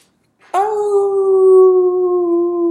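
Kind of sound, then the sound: animal, coyotes howling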